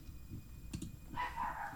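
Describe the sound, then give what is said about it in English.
A small female dog of about 5 pounds barks outside, muffled: two quick sharp yaps, then a higher, drawn-out yelping bark trailing off, with no talking. “That's my dog outside.”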